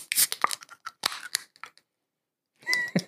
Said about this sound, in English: So you've been doing better with the cracking of the beers. Yeah, it's getting there.